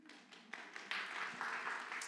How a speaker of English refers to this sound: But so thank you, those of you that are praying for us. Golf clap it.